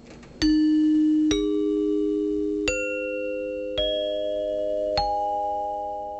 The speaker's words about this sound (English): Chimes in particular would have been the easy choice due to how common they were. Dinner chimes were often used to summon guests to the table, and it also used to indicate the start and stop of intermission.